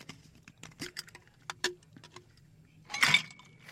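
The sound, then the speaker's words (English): Ice cubes clink into a Sazerac cocktail made with absinthe and a lemon twist: a few sharp, scattered taps, then a louder clattering rush with a brief glassy ring near the end, no voices. “Some more lemon. And you finish with ice.”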